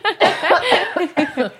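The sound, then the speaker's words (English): A rapid run of loud, voiced coughs follows one another in quick succession over a second and a half, each burst harsh and breathy, with a brief pause before the last few. “When I cough, it just keeps going.”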